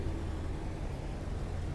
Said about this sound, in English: There's a car driving through this parking lot, and it is smoking up a storm, man. It's smoking up a storm.